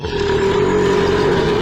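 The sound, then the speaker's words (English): A wolf gives a single long, loud belch, deep and rumbling with a steady droning tone, sustained for nearly two seconds with no talking. “The satisfied lupine responded with a loud belch, making the woman wince and turn her head.”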